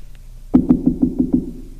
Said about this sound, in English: Go to somebody's house. Knock on their door.